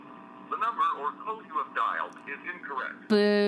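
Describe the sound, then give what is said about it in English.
People talk for a few seconds, then a loud, steady electronic telephone ring tone cuts in abruptly at the very end, a call to a 1-900 number ringing through a phone on speaker. “All right, it's ringing.”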